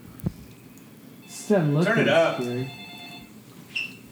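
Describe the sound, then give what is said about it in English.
A telephone rings in a steady, sustained electronic tone for a couple of seconds, while a voice speaks over it in the foreground, with a faint click before and after. “Oh, yeah, you answer the phone and you die?”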